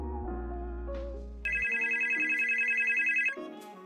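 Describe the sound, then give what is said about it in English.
A telephone rings for an incoming blue (emergency) call with one sustained, high-pitched warbling trill lasting about two seconds, fairly loud, preceded by a low steady hum and some faint tonal sounds, with no one talking. “All right, so, MT's going to take the blue call and Saga's going to assist him, I'm assuming.”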